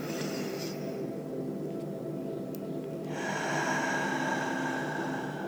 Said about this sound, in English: So let's take a deep breath in now. And let it go. You want to use your Ujjayi breath, which is a yogi term for deeper breathing and then an audible exhale. So deep breath in.